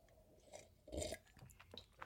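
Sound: sipping coffee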